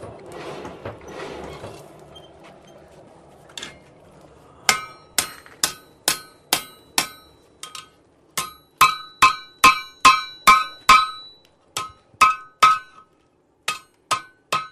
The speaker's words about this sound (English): The blacksmith gets his metal hot enough, out, brings it out of the fire to the anvil here, and gets his hammer and what other tools he's got, and starts shaping it into whatever he needs.